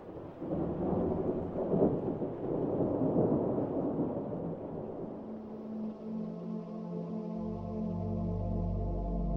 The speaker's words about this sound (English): Looks like it's gonna rain to beat all hell tonight.